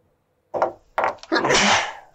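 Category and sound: human body sound, sneeze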